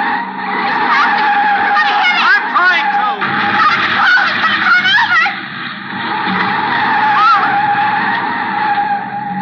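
Loud, sustained tire screeching as a car pulls to one side and brakes hard, skidding, with wavering squeals over an engine rumble for several seconds, no voices.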